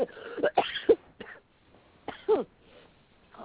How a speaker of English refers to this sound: Cough. And even the cough's coming out for more release.